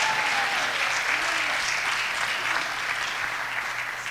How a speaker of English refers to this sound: Hallelujah. Somebody give the Lord a clap offering of praise.